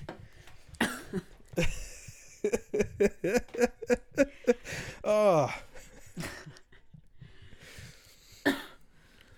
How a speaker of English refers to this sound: I don't know. I just had to cough and there was nothing I could do about it.